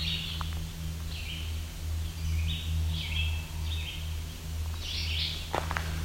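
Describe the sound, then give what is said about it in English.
Barn swallows flying overhead along a trail give short, high twittering calls in a handful of scattered bursts, not song, over a steady low droning hum. No one speaks. “You can also hear some barn swallows overhead.”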